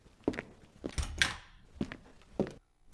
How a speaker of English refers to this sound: leaves with footsteps.